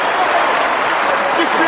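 Steady, dense applause from an audience, with Gorbachev getting up and clapping, fills the whole moment, a continuous loud patter of many hands clapping at once with no pause.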